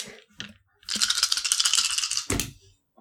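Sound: dice being rolled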